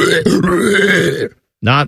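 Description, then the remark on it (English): A voice imitates a guttural, pig-like growl like a metal band singer: a loud, rough, low grunting roar lasting over a second, a brief pause, then a shorter strained grunt. “Maybe I can be a singer for one of the metal bands that you like. Just making like guttural pig noises.”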